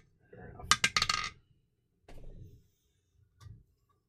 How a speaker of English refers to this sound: Give me a persuasion roll. Let's leave this up to the dice.